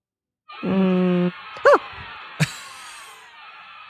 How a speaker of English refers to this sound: That's the kid screaming.